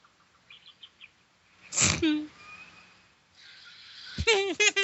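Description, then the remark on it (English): Calls of parakeets attacking a person: soft high peeps at first, then a harsh screechy burst and a rapid run of raucous squawks near the end, fairly loud. “Parrots killing people. You got killed by a parakeet.”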